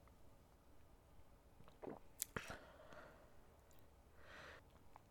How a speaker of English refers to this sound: I'm going to take a brief moment to have another sip of this 291H High Rye.